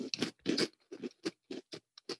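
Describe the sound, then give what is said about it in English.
Someone chews a crunchy, cheesy, slightly spicy U-shaped snack that is both crunchy and chewy, with a quick run of about ten soft, crackly crunches in a steady, slightly uneven chewing rhythm. It is quiet, and no one talks. “It is both crunchy and chewy at once.”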